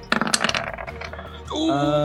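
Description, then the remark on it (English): Dice rolled for an attack in a tabletop role-playing game clatter across a hard tabletop in a quick burst of sharp, rattling knocks that settle within a second, landing on a 4, followed by a sustained, ringing tonal sound. “It looked like it was an 18 on the dice. It's a 4.”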